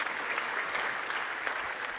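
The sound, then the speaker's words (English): A crowd applauds steadily, many hands clapping in a dense, even wash of sound with faint sharper claps poking out, holding at a constant moderate level throughout. “Funnily enough, if one person claps, we all have to.”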